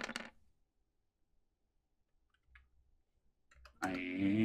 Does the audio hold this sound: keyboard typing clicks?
yes